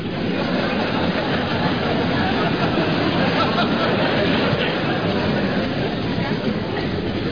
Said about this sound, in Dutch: Dank u wel, dank u wel. U bent bijzonder vriendelijk, mensen. Het hele land hoort u klappen, dat weet u, hè? En België ook, zijn ook ingeschakeld.